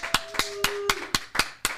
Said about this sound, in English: So round of applause for Ashlyn and Mama Liv.